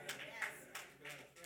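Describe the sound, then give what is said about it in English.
A handful of scattered, unenthusiastic claps, about five sharp slaps spaced irregularly over a second and a half, with a low murmur of voices underneath. “I got like six claps. I got the golf clap.”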